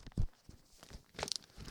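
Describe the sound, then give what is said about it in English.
Sheets of paper with songs on them being shuffled in a studio, a few quick rustling and crinkling bursts with a sharper crackle near the end, fairly quiet and with no voices. “Let me just shuffle through all my songs I've got here in the studio.”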